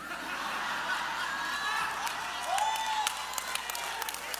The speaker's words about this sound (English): Praise the Lord. Okay, don't be clapping too quick. Don't clap too quick.